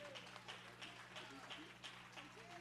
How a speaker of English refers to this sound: Let's give the Lord a hand clap of praise.